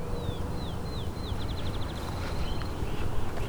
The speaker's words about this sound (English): The space has a lot of field sparrows, so you will get to know the species if you're here, especially in the morning when they're singing quite heavily.